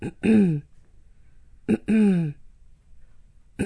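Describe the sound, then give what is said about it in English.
A voice imitates a woman standing in a queue clearing her throat twice in a row, each a short, gravelly burst, loud, with brief quiet between them and the start of a third at the end. “kept clearing her throat”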